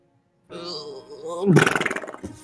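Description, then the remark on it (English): A voice imitates a character's fart as she closes her eyes: a low, wavering hum rises into a loud, buzzing, fluttery raspberry of rapid pulses that trails off after about a second. “She closes her eyes and farts. But then afterwards... Yep. it sounds just like that.”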